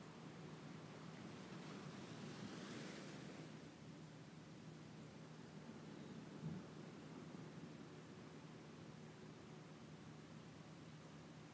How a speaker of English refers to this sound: Standing on the water's edge, watching the ocean waves crash at your feet and recede out.